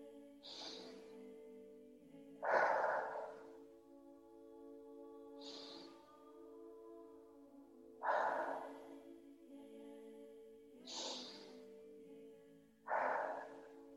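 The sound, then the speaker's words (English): Three slow breath cycles, each a soft airy inhale through the nose followed by a louder, fuller exhale through the mouth, steady and unhurried over a quiet sustained musical drone. “Still breathing in through the nose and out through the mouth, but with a little bit more intensity.”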